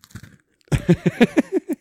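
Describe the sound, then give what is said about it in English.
Crunching of candy-shelled malt chocolate eggs: a few faint bites, a short pause, then a loud run of about eight sharp, rhythmic crunches as they are chewed, with no talking. “And like, listen to this crunch.”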